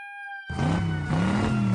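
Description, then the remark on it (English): A short steady electronic tone gives way to a loud motorcycle engine revving hard, its pitch climbing, dipping briefly, then rising again, with no voices. “He says, cue up the siren and motorcycle, Rev, brother.”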